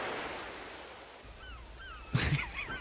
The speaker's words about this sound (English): It starts off with the birds at the beginning. Really? Yeah. Hang on, let's see. Yeah, he said seagull. Listen. There's waves.